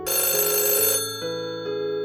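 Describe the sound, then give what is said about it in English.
A telephone bell rings loudly in a living room in one bright, jangling burst lasting about a second, followed by a softer ringing tone that lingers and steps in pitch. No one speaks. “Mary is standing in her living room minding her own business when her phone rings.”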